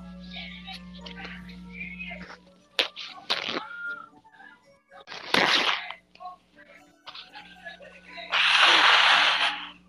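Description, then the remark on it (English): A person blows their nose, heard through a microphone: several short, loud nasal bursts, harsh and breathy, come in quick succession, with the longest, noisiest blast at the end; faint background hum and scattered clicks underneath. “Blowing my nose. Well, I can hear it through your mic.”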